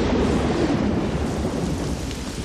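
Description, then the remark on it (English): Heavy rain pours steadily while a deep, continuous rumble of thunder rolls underneath, loud, with no voices present. “I might say, could we please not have so much rain?”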